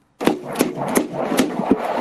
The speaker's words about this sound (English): banging on a car, part of a sidewalk auto repair.